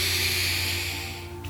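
A slow, deep breath drawn in during a guided relaxation exercise, heard as a steady airy hiss that holds for over a second before tapering off, quiet over a faint low hum.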